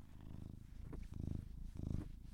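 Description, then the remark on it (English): A male cat purrs steadily, a low rumbling buzz that swells and eases in rhythmic cycles with each breath, with no talking. “Considering we have the cat right here, and he's very distracting.”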